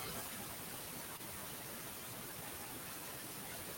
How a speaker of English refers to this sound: I'm getting static.